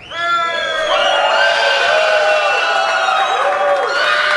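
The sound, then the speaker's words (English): An audience cheers loudly and continuously for about four seconds to vote for a finalist in the Miss Bochkini 2019 contest, judged by applause meter, with high-pitched screams and whoops rising and falling over a dense, steady roar of voices. “Applause meter.”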